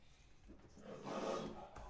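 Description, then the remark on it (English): A lion's roar from the MGM film studio lion logo, played at the start of a movie, swells over about a second, peaking in a rough, growling rumble before tapering off. It plays alone, with no talking over it. “We are sitting and looking at the MGM Lion logo right we're now.”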